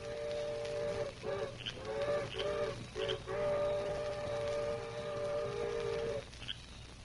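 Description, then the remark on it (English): A distant eastbound train's whistle sounds a few short, wavering blasts, then one long steady wail lasting several seconds, its harmonic tone held over a low rumbling background before it cuts off. “But now, every time I hear a distant train whistle, I'll think of the story I just heard from the Lone Ranger.”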